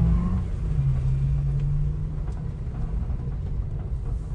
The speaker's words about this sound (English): Get the motor noise. We're not going to be able to hear shit.